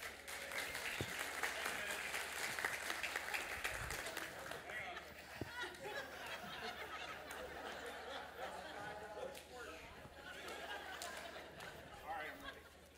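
An audience claps steadily for about thirteen seconds, dense and sustained applause with a few scattered whoops and some chatter mixed in, fading slightly toward the end.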